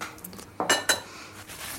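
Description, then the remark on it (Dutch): Cutlery clinks against dishes during a meal: two sharp, bright metallic taps close together, with softer scraping and clatter before and after. No one speaks. “Hij is aan het eten.”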